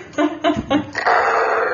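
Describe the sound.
A person imitates a dog's growl: three short, gruff vocal bursts in quick succession, then a longer raspy, breathy rumble that trails on at steady volume.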